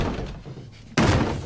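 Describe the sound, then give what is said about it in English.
A door slams shut with a single loud, sharp impact after a quiet stretch, followed by a brief lingering rumble. “And that door slamming, that's as good a metaphor as you get for the relationship being basically over.”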